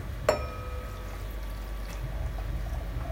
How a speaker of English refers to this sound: I always do like this. I'm doing that because I know I will drip otherwise. And as you pour, it gets easier. See, I dripped. That's not good.